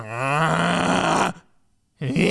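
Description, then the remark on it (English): A voice imitates two people snoring: a long, rough, droning inhale-like rasp, a brief pause, then another guttural snore beginning, loud with no words spoken. “They snore in sync, like a damn opera.”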